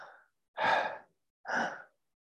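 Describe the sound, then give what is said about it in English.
Two deep, deliberate breaths in, evenly spaced with short silences between, after the tail of a previous breath. Airy, rhythmic, no talking. “And you're just breathing in.”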